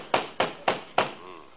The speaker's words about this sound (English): Mm. Yeah, that's a dispossessed knock if I ever heard one.